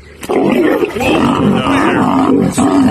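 A lion lets out a long, loud, rumbling roar lasting nearly three seconds, deep and growling with shifting pitch, heard on its own without talk.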